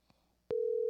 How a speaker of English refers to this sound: It's ringing. That's a good sign.